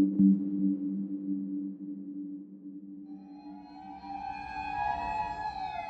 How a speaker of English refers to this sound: Sirens wail as rescuers in Japan rush to reach survivors of a deadly earthquake.